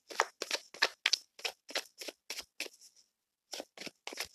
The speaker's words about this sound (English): Let me shuffle a little bit more.